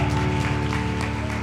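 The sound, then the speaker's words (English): An audience at an apostolic church in Osho, Missouri, stands and claps together to praise God in a steady, dense wash of hand claps, heard over sustained organ-like music tones and low bass notes. “If you're happy to be a part of it, stand to your feet, clap your hands, and let's give God praise.”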